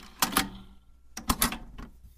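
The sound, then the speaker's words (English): A female dog lapping water from a bowl, taking a big drink: quick, wet slurping clicks come in two short bursts with a brief pause between, fairly soft, and no one talking. “You can hear my dog drinking here, sorry, she's drinking, he can't hear it, okay, good.”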